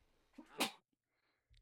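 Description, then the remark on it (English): A single sharp sneeze bursts out, a quick inhale building into a loud explosive release, followed by a brief quiet before faint movement resumes. “Bless you.”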